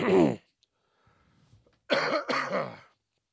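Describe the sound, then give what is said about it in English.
A brief voiced burst, a pause with faint low rustling, then a two-part cough made over the shoulder during a microphone test, rough and throaty, sounding a little muffled and off to the side. “Cough over my shoulder.”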